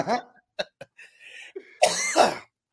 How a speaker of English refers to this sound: Like, fuck, I was, man, tears are coming out of my eyes, coughing.